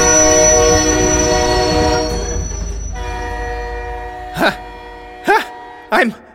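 vehicle, train passing by

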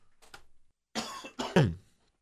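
human body sound, cough

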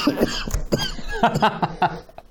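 human body sound, man coughing repeatedly

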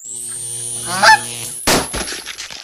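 bird, goose honking

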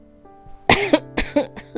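human body sound, coughing and throat clearing

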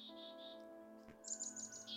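bird, birds chirping outdoors

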